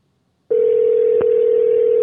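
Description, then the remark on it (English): A phone line's ringing tone while a call connects through Google Voice starts abruptly and holds as one steady, loud, unbroken pitch, with a faint click partway through. No one speaks. “It's ringing, but the other weeks it hasn't been, like, you know, it's been saying this isn't working.”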